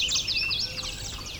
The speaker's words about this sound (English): Yellow warbler. Here it goes.